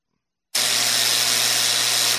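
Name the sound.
buzzer sound effect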